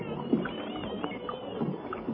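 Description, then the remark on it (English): Oars dip and churn through water in a steady rowing rhythm as a boat is rowed over to board another boat, with soft splashes and gurgles and a low hull rumble underneath. No voices. “All right, we pull to. Let's row over.”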